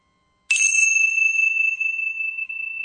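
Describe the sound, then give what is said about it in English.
A single bright chime is struck once and rings out clearly, its sustained metallic tone lingering and slowly fading over a few seconds, with no voices present. “And we're going to have our chimes.”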